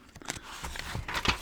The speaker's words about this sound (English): if you can hear my paper